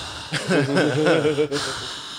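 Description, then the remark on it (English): Heavy, voiced breathing right into the microphone: a loud, wavering, moan-like exhale lasting over a second, continuous, with a brief catch of breath partway through. “Don't heavy breathe into a podcast like that.”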